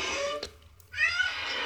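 A cat yowls twice, two strained, drawn-out cries separated by a short pause, the second one longer and rising, with no one talking.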